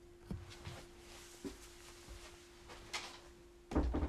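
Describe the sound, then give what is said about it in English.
A few soft clicks and handling noises over a steady low hum, then a door is shut with a muffled, solid thump near the end. No one speaks. “All right, I had to shut my door open for some reason.”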